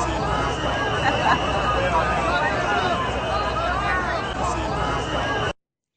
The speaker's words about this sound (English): And listen to the crowd outside. There were a lot of them cheering for him as he came out of the courthouse.